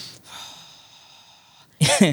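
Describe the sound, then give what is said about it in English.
A voice imitates heavy, angry breathing: one long, forceful exhale through the nose and mouth lasting over a second, then a sudden loud vocal burst right at the end. “I think we had it a bit on like footage, and you can just hear me breathing. I'm like just stewing, sitting there like.”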